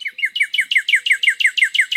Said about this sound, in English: Flowers pop. Birds start singing with all their hearts.